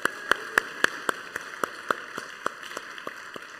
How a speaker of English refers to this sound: Everybody give a round of applause for that.